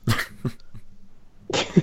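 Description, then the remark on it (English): A person coughs, three quick harsh bursts followed by a longer, heavier cough, with no talking around it. “I'm gonna keep muting myself throughout the whole podcast because I'm gonna be coughing like crazy.”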